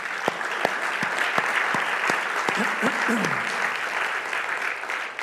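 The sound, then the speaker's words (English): An audience claps to the Lord steadily and loudly, a dense wash of applause with a few sharper individual claps standing out, while a voice briefly calls out partway through. “Can you say amen to that and clap your hands to the Lord?”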